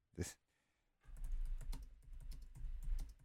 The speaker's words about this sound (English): I'm imagining typing noises. If you can't hear them. That's what I was doing.